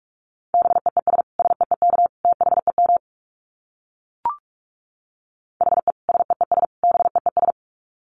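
Rapid Morse code beeps at 45 words per minute in a single steady pitch, keyed in fast clusters of short dits for a few seconds, then a pause broken by one brief click before another quick burst.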